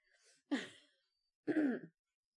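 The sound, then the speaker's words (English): A small dog held in a person's hand gives two short, breathy huffing pants, each burst about half a second long, separated by a brief pause, with no talking, as it wiggles to get out of the hand. “So now she is wiggling and panting to get out of my hand.”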